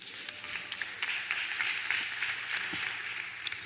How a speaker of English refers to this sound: Thank you. Give them a round of applause.